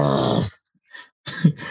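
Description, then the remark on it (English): A dog named Duck lets out two rough, low barks with a growly, grunting edge, separated by a brief pause with a few faint squeaks in between. No one speaks. “Tell your barking parrot that I love him.”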